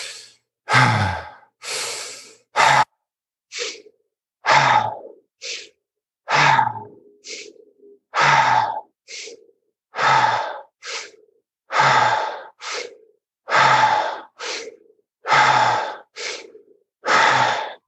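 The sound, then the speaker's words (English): Deep, rhythmic breathing during a guided breathing exercise, with alternating long, forceful exhales and quicker, sharp inhales repeating steadily for the whole stretch, no talking. “Keep breathing on your own. Try to inhale with acceleration. and exhale with vibration.”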